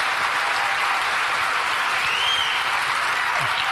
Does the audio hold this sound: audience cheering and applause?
yes